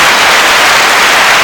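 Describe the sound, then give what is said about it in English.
A burst of applause from a sound effect track played for Duke basketball: dense, steady crowd clapping that plays loudly for about a second and a half, then cuts off abruptly. No one speaks over it. “Let's hit an applause track for Duke here.”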